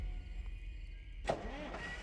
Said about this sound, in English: helped her into the car and they took off.